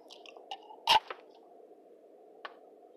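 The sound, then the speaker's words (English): A beer can pops open with one sharp crack and a short fizzing spray of beer, then a soft hiss lingers with a few small clicks after it. Fairly quiet, with no talking. “So, as I spray beer everywhere”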